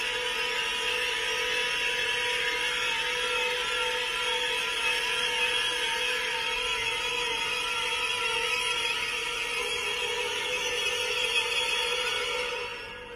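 Dense, sustained orchestral tone clusters hold steady and loud for the whole stretch, shrill high layers stacked over a low churning rumble, like dissonant 20th-century strings, with no voices.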